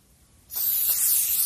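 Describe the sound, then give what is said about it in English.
After a quiet moment, aerosol sanitizer spray cans burst into a loud, steady hissing spray that continues without pause, bright, with no voices present. A man is turning the sanitizer sprays on himself, using the cans to their extent. “Logic Lad turns the spray sanitizers on himself and uses the cans to their extent.”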